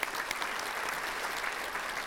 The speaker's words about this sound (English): Giving a big applause.